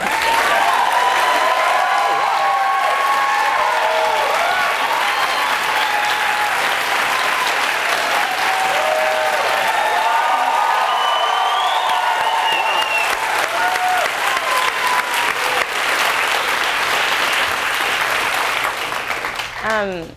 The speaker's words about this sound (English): So can we just clap?